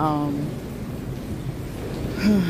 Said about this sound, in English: You're probably hearing all the wind. You're probably hearing all everything. I'm sorry. I'm right by the water under the bridge.